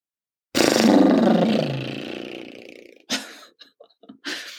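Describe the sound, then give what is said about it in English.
A long, forceful exhale blown out through flapping lips, a 'horsey noise', a loud buzzing rumble lasting over two seconds that gradually fades, then a few short breathy puffs. “And so I want to start off this podcast by doing one of my favorite things, which is when I become exceedingly overwhelmed or frustrated or angry, I make this noise, which is to exhale and blow out my lips.”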